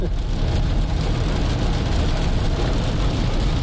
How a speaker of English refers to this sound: I hope this isn't too loud with the rain. Love the sound of that, don't you?